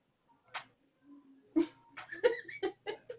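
dog whimpering

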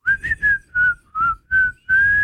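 person whistling a tune

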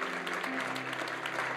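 audience hand clapping

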